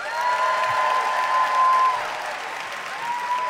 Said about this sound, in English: All right, let's give it up. All right, by applause, who cheers for the pro side?